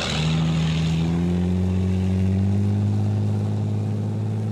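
A motorboat engine drones steadily, its propeller churning with a deep, even hum whose pitch slowly rises as it runs. No voices, just the continuous loud motor.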